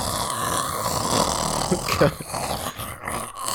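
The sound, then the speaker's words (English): A voice imitates a loud snore, a harsh, rattling, growl-like rasp held steadily for a few seconds, with no other talking. “like a real snore, the way I figure, like a snore is like this. This is the way I think a snore should sound.”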